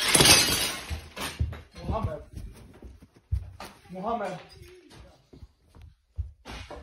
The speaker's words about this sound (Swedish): Du, han krossar glaset med en sten.